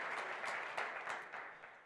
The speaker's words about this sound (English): Okay, yeah, you can clap about that. Yay. Wonderful.